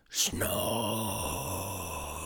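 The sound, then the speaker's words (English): A voice imitates a snore: a quick breathy intake, then a long, low, groaning drone held for about two seconds, steady in loudness. “Snore.”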